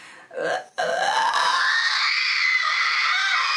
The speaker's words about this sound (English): But the texture, that's where you get your screams and stuff. That's right, that's here. That's the upside down triangle. Let me see if I can get you a nice scream. Hang on.